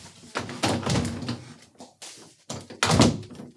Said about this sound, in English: I gotta close the door.